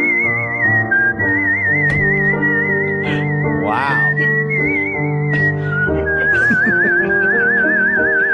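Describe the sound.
A whistled show tune from the musical Cats, long sustained high notes with wavering vibrato, carried over a steady instrumental backing track; a voice briefly exclaims once partway through.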